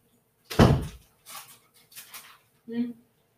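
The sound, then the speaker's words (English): A door swings shut with a single solid thud, followed by a few softer, muffled sounds and a brief low voice-like tone. “Close the door, baby girl.”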